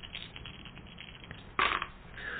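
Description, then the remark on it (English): Three dice rattling and clattering across a hard surface, a run of small clicks building to a sharper burst of knocks near the end before settling on 6, 4 and 1, with no talking. “So I'm going to roll three dice.”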